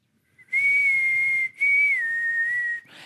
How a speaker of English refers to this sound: And I don't even know if you can hear that or not. I'll whistle back to her, and then she'll be like, you know, and she'll do it back. And we just keep going back and forth until I get all the way to the room.